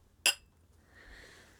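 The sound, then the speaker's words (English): Glasses clink together once in a toast in a home studio: a single bright, ringing chime that fades quickly, followed by a faint, soft hiss. No one speaks. “Well, cheers. Cheers.”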